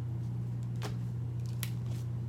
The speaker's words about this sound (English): Let me just finish shuffling to see if any other cards want to come out.